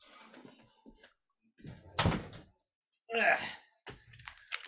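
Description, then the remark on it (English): A door swings shut with a short, solid thud, surrounded by quiet shuffling, soft breaths and a brief sigh. “Let me go close my door.”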